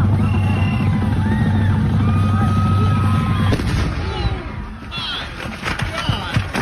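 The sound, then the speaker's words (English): A bonfire wood pile, a big pile of wood including wooden shipping pallets, explodes, a loud low roar that suddenly drops away after a few seconds into sharp crackling pops and bangs, with muffled voices mixed in. “So you could hear the explosion. It was a big pile of wood, including pallets, you know, the pallets that they put merchandise on and they set up on racks at like Home Depot or Sam's Club or Costco, whatever.”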